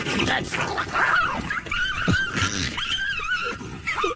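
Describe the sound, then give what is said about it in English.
Dogs on a walk snarl and yelp in a frantic scuffle over a dead rat in the grass beside a curb, harsh growls mixed with shrill, wavering cries that run continuously for a few seconds. “So sounds like they're being like attacked by a coyote.”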